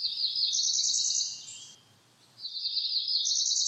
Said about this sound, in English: The cerulean warbler feeds primarily on insects and nests in trees using bark fibers, grass stems, and hair bound together with spider webs. They lay 1 to 5 eggs that are grayish to greenish white with brown speckles. That's the cerulean warbler.